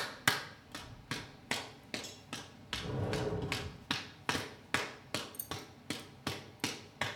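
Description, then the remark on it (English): Hands slap knees in a steady rhythm, a long run of sharp, firm smacks with a brief pause of rumbling noise partway through. No one speaks. “How about if I slap my knees?”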